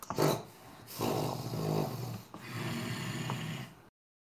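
Loud, heavy snorting from a large creature in a cavern: a few rough, breathy snorts and growling exhalations with a noisy, rustling texture, cutting off abruptly. No one speaks.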